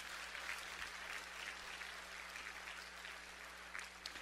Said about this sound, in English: and just give him a clap thank for that. Amen.